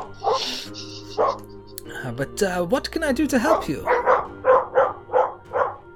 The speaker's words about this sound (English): Excuse me, this is my dogs. You have a lot of dogs. They're very loud.